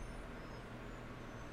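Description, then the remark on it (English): A garbage truck's engine rumbles steadily as it arrives to collect trash, a low droning roar with faint higher whines above it, continuous with no voices. “And now I got the dump truck coming to collect my garbage.”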